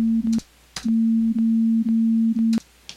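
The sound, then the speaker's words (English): A steady, low, crude homemade digital synthesized tone drones, broken by short dropouts and sharp clicks at uneven intervals, giving it a glitchy, stepped digital character. No one speaks. “have things in it that are stair steps or glides or artifacts that aren't there in analog tones.”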